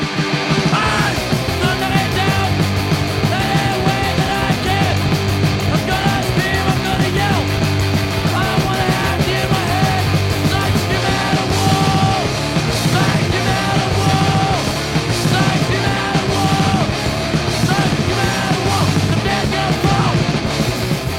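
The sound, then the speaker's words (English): A fast, loud hardcore punk song by a Washington DC band, from its debut compilation of 7-inch records, with shouted vocals over distorted guitars and rapid pounding drums, a relentless wall of sound that never lets up for the whole stretch. “the blueprint for hardcore was simple. Play it louder, play it harder, play it faster.”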